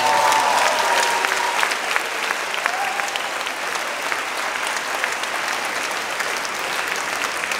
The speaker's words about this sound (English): I've never seen an event like this. It's crazy. And just clap it up for each other. It's amazing, guys.